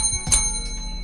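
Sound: bell ringing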